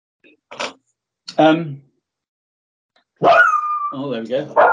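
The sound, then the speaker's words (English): A dog gives two short, sharp barks with a pause between, then after a brief silence lets out a longer, drawn-out run of loud barking and yowling. “Wolf's gone off. That's a difficult question. he's answered it. He goes, "Bark at them."”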